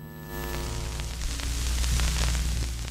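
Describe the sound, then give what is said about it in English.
A steady, continuous white-noise hiss, of the kind some SCIFs (Sensitive Compartmented Information Facilities) emit to prevent eavesdropping, fills the background at moderate volume, with a low electrical hum beneath it and faint crackles scattered through. No one speaks. “Some emit a kind of white noise to prevent eavesdropping.”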